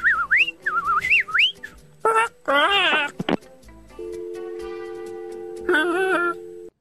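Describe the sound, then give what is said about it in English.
A person on a phone call to a bird sanctuary whistles a quick series of looping, rising and falling bird-like calls, then adds warbling, voiced chirps in imitation of a bird, before a steady flat tone takes over. “I was trying to talk to her in bird.”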